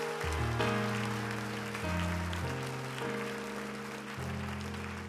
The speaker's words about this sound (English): Can you clap your hands unto God one more time?